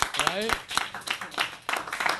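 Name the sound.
clapping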